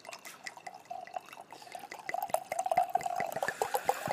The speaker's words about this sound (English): That's a good pour. It's nice. Italian red blend. Susa Manello.